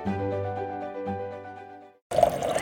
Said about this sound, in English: The tap is finally open. To be honest, it's almost surreal. As a fresh source of water surges into Waukesha.